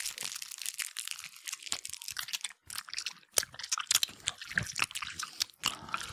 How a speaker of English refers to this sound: Everyone, take right a chew. Into the mic. Okay. No, we're going to chew it into the mic, not the plastic. No, and the plastic.